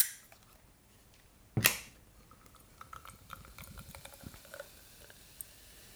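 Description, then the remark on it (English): A can of Fierce and Noble Galaxy Pale beer cracks open with one sharp hiss, then the beer pours in with a steady fizzing, crackling sound, fairly quiet, with no one talking. “This is a Galaxy Pale. So good on you guys, in spirit of this episode, what we were talking about, cornicing session IPAs.”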